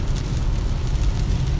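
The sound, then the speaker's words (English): A car drives through rain, its deep engine and road rumble blending with a steady hiss of wet spray as another car covers its windshield with water. The sound holds constant throughout, with no voices. “I'm driving through the rain, and this car totally covered my windshield with water where I could not see.”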